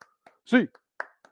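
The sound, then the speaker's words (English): A handful of quick, sharp hand claps tap out a steady eight-count rhythm, the UCLA fans' '8 clap', some crisp and some faint, with a short burst of a voice cutting in partway through. “get your hands in the air. 8 clap time, baby.”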